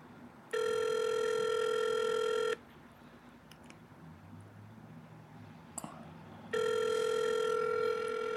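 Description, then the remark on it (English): An unanswered phone call: two long, steady, buzzing ringback tones, each about two seconds, separated by a quiet pause with faint background hiss and a small click. No one speaks. “All right, they're not picking up.”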